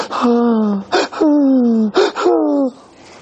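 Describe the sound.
A voice imitates a hiccupping sob: three long wavering wails, each cut off by a sharp catching gasp, with a falling pitch, loud and alone, then a faint breathy tail.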